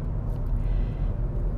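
Steady low rumble of a car on the move, engine and road noise droning evenly and fairly loud with no speech, like sitting inside the vehicle, as it drives toward an arch.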